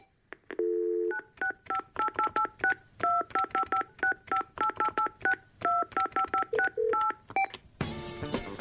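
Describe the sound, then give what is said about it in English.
A long, rapid run of touch-tone telephone keypad beeps dialing a long phone number, dozens of short dual-pitched tones in quick rhythmic bursts after a brief opening tone, ending in a burst of noisy static. Loud, no talking. “Why are phone numbers so long?”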